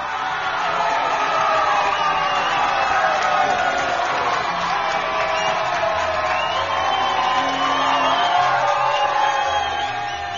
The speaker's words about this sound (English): Give a clap offering unto the Lord. Give a clap offering unto the Lord. Give the Lord praise.